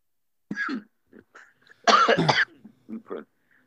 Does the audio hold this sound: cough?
yes